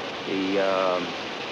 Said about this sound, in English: That's the rain in the background, by the way.